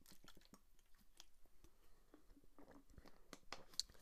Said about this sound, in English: Going to take a quick sip, and we'll go to things to look for.